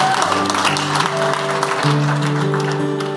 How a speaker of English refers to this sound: And so this is not a spectator sport. The band's going to be leading, but every time somebody comes in and out of this water, every time they come out, we are going to cheer like rabid Cleveland Browns football fans.